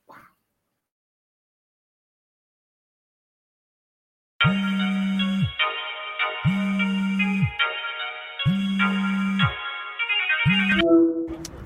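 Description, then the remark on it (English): A phone line rings with a loud, buzzy electronic tone in four evenly spaced bursts about a second apart, then cuts off abruptly as the call connects. No one speaks. “Let's check these lines, man. Let's see who on the phone.”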